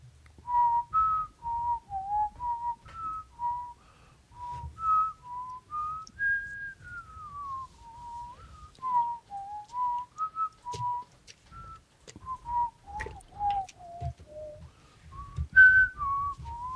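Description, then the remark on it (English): A person whistles the Jeopardy think music alone, in steady phrases that last over fifteen seconds, with soft low thumps and rustling underneath. “I really like how patient you two are being with me, but while I just whistle Jeopardy here and you're not saying anything...”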